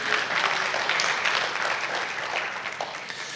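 An audience applauds steadily, a dense wash of many hands clapping at an even, fairly loud level that fades slightly toward the end, with no voices standing out.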